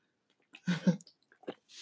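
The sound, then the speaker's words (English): Someone sips water, with a couple of quick wet gulps followed by a few softer mouth and swallowing noises. No one speaks. “Let me take a sip of water, though.”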